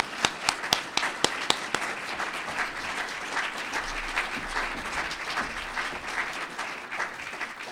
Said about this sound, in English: Please join me in another round of applause for these young individuals that make us want to be better Rotarians.